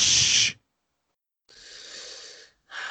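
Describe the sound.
Someone makes three breathy "shh" shushing sounds, a short loud burst, then a longer softer one after a pause, then a third starting. The airy hiss is bright and steady, with no talking.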